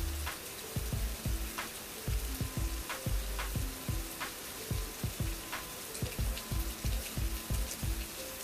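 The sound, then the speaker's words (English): Steady rain hisses outside with a constant wash of noise, punctuated by frequent soft thuds and taps of drops striking a surface. No one speaks. “anyway, this rain got me going.”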